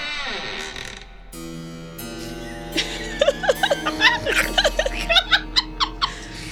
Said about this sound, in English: It's been a while since I've added any Foley work to this kind of stuff, so I put in opening creepy door.